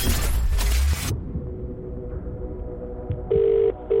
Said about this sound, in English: Now, remember, you need to answer the phone before it's rung five times